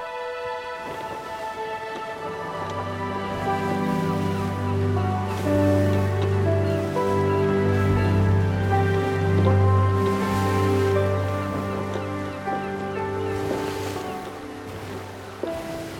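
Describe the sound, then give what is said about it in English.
Sea water on the open sea washes steadily around a boat, waves lapping against the side of the vessel, a continuous moderately loud wash with a sustained low, droning tone beneath it. No one speaks. “When he closed his eyes and focused on the waves lapping against the side of the vessel, he could almost push the thought of the coming battle from his mind.”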